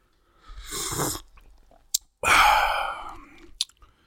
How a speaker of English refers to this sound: Now, please excuse me for some sips here. I'm having a little eggnog right here, a little spiked eggnog. Cheers, ladies and gentlemen.